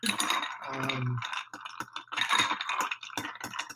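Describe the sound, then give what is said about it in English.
Ice rattles and clinks steadily against glass as a drink is stirred, a busy stream of sharp little knocks with a brief ringing tone early on. “Stir this up really good.”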